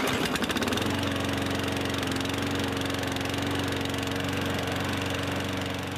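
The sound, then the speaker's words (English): A petrol lawn mower, a next door neighbour mowing the lawn, sputters briefly as it revs up, then settles into a loud, steady droning hum that runs unbroken for several seconds, with no voices. “Sound effect one. One of your next door neighbours mows the lawn.”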